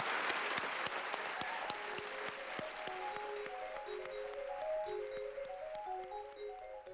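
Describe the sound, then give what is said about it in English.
Dense, steady audience applause at a Sydney Opera House talk for panelists Sasanka Misiman, Ta-Nehisi Coates and Megan Davis fills the whole stretch, many hands clapping at an even loudness, while a light melodic tune fades in beneath it after the first couple of seconds. “A big round of applause for Sasanka Misiman, Ta-Nehisi Coates, and Megan Davis.”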